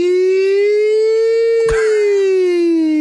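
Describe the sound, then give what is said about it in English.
A voice imitates a two-tone siren, holding one long, loud, buzzy tone that slowly rises and then sinks in pitch, broken by a sharp click partway through. “Two tones, how are we going? Nino, Nino.”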